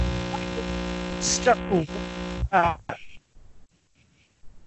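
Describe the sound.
Harsh, buzzing microphone distortion drones loudly for about two and a half seconds, with a garbled voice beneath it, then cuts off abruptly into near silence broken by faint, quiet sounds.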